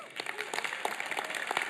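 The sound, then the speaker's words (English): A church audience breaks into applause, clapping for the overturning of Roe v. Wade: a dense and steady patter of many hands clapping at moderate volume, with faint voices mixed in beneath the claps. “Absolutely, that is something that we can clap for, something that we can rejoice in.”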